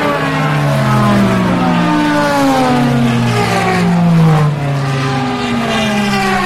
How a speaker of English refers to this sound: That was the new Aston Martin 009. That boom.